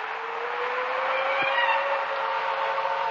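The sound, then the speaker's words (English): A steady, continuous car engine hum with road and tire noise, a car driving along at a constant moderate speed, even in loudness throughout, with no voices. “With every mile, the car brought me closer to reunion with someone who no longer existed.”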